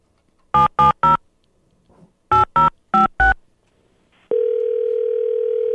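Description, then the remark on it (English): Telephone dialing for a call to a guitar giveaway winner: a quick group of three keypad beeps, a short pause, then four more, followed by a loud, steady phone tone that holds to the end. No one speaks. “So we decided to give him a call on Saturday. He didn't pick up his phone.”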